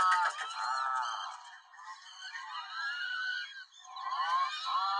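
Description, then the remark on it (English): A bird gives a continuous run of loud, nasal honking calls, overlapping and rising and falling in pitch for several seconds, with no talking. “That's a bird? Yes.”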